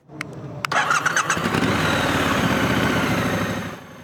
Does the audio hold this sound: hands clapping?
no